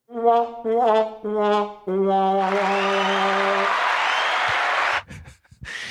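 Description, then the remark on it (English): A sad trombone plays four descending notes, the last one held, then loud, steady applause immediately takes over and continues for a few seconds before cutting off abruptly. “I played sad trombone followed by applause.”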